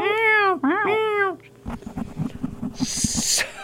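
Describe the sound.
A voice imitates a cat meowing at a closed door, with two drawn-out, whiny meows in quick succession, followed by rough breathy noises and a brief airy hiss at the end.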